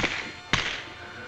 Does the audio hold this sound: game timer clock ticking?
no